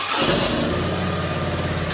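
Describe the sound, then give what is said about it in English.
Motorcycle engines of military veterans' motorcycles, the North Dakota State Chapter known as the Frozen Chosen, rumble loudly and steadily, a continuous idling growl with a throaty low pulse and a broad roar on top, and no voices. “And for years, they have braved the elements and rode their motorcycles to Castleton and back to earn the patch.”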